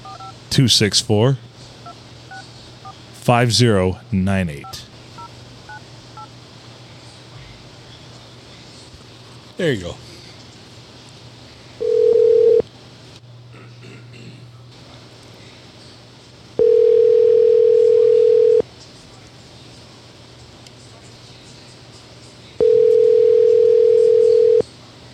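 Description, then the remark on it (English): Telephone keypad tones and a dial tone while calling a Jersey Mike's subs shop, ending in three long, steady electronic beeps separated by pauses. The beeps are clear and sit above a low, constant background hum. “Are you ready for the phone number?”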